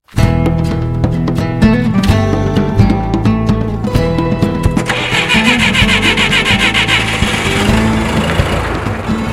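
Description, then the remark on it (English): A large diesel truck engine, on a truck towing a trailer full of empty tanks for a drive from Edmonton south to Banff National Park, cranks and catches, settling into a loud, rumbling idle with a steady mechanical rattle; no one speaks. “Lamb and Paquette drive a truck towing a trailer full of empty tanks more than 4 hours south of Edmonton”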